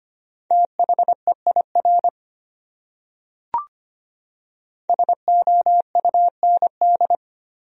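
Morse code beeps sending common words at 25 words per minute on a single steady mid-pitched tone, rapid dots and dashes in two bursts separated by a silent pause broken only by a brief click.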